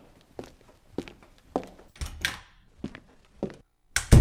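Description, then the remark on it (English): Footsteps of someone leaving the room walk off at a steady, even pace, each step a crisp knock, and the sequence ends in a louder, heavier thump. No one speaks. “leaves with footsteps.”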